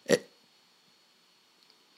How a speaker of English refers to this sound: sorry, I had a hiccup there,